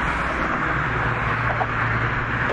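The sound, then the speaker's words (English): A steady, dense roar of traffic passing on the Camden Bridge on a warm, sunny day, with a deep low rumble underneath, loud and continuous with no clear gaps between vehicles. No one speaks. “I'll spare you from the rest of the sounds of the traffic going by.”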